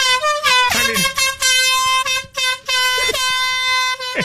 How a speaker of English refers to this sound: It's like the air horns like we use and Iceberg uses at the Penguins game, like the handheld little air horns.